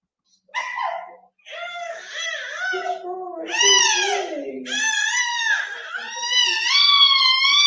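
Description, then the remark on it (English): A baby boy cries and screams loudly and continuously, wailing in strained, rising bursts with brief catches of breath between them, intense throughout. “Did you hear how loud he was crying? Did you hear him screaming?”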